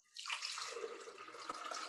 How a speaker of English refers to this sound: Pouring the pineapple juice in.